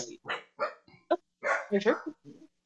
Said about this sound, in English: He heard a noise and ran off barking.